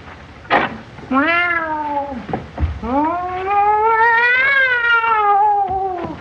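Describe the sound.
Groucho, crawling around on a railing at a party in a film, imitates a cat, giving two loud meows: a short wavering one, then a long drawn-out yowl that rises and slowly falls, with a brief sharp noise just before.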